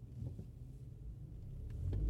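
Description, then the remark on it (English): A steady low engine rumble from inside a moving car, droning continuously and swelling slightly louder toward the end, with faint brief clicks and no talking. “Okay, so as I said, I'm driving.”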